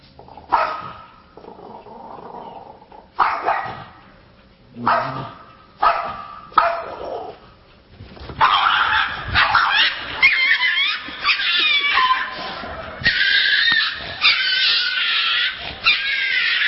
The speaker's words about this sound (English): Look who's barking now.